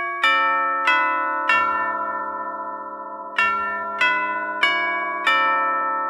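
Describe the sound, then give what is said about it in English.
A doorbell chime rings out seven clear, bell-like strikes in an irregular ding-dong pattern, each tone lingering and overlapping the next. It is loud, with no voices. “Now, normally you think of chimes as being a doorbell type thing. You know, you come to a front door and ding dong.”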